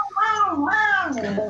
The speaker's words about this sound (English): Is that your cat again? Yes. Yeah. I thought that was a little baby.